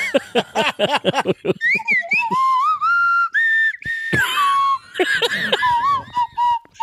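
A slide whistle played up close, starting with quick swooping up-and-down slides, then holding longer wavering notes that bend in pitch. It's fairly loud, with no talking.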